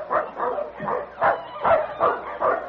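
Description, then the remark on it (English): A sled dog team barking and yipping in a rapid, steady series of excited calls, loud, with barely a pause between them. “Say, listen. Do you hear that? A dog team.”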